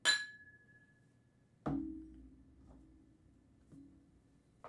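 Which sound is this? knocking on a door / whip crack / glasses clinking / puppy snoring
glasses clinking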